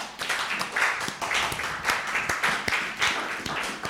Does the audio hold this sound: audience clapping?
yes